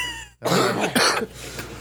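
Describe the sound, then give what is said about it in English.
A person coughs twice in quick succession, fairly loud, with a harsh raspy burst followed by a second, then a brief rough trailing breath. “Coughing break. Coughing break.”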